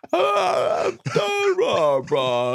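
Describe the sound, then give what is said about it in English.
A voice mumbles through a yawn, its words stretched into three drawn-out, groaning phrases with sliding pitch, a person talking while yawning. “People that talk when they yawn.”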